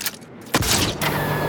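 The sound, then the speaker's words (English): A sharp blaster blast erupts after a brief lull, followed by loud, crackling, sizzling noise as shots strike the control panel of an access door in the side of a ship, with a second burst near the end. “I might have to blast the control panel.”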